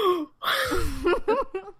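A person gasps sharply up close, a breathy intake of air followed by a few short, rising vocal cries, with no words spoken.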